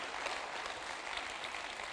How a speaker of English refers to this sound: So why don't we just clap Pastor Shane, because he's amazing.